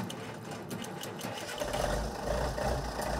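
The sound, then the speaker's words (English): A vintage Moline G900 tractor engine, one of about 25 made, runs steadily in Missouri, with a rapid mechanical clatter that swells into a louder, deeper rumble partway through, as if revving up. No one speaks. “Moline probably was one of the first that actually put front wheel assist on tractors.”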